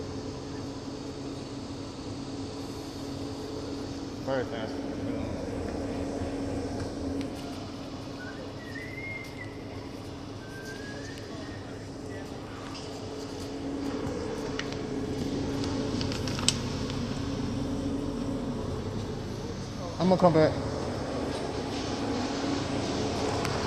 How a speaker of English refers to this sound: Yo, like, I'm on the motherfucking bus.